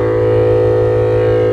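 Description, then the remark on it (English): A single double bass note played with an up bow stroke and held steadily for over a second, a loud, rich low tone with buzzing overtones and no talking over it. “That's an up bow.”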